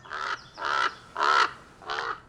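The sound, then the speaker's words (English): Four harsh, rasping crow caws ring out in a steady, evenly spaced rhythm, each call loud, with brief quiet gaps between them and no talking. “I have trouble telling crows from ravens.”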